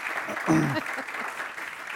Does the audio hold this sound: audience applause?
yes